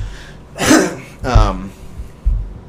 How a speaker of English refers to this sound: sorry for the coughing. I notice I do that a lot on this show, and I'm really trying to tone it down. It's like, do people really want to hear you choke on your freaking phlegm, dude? Like, clear your throat before the show, drink some water